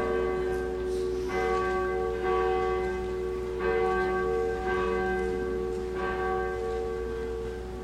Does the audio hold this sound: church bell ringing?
yes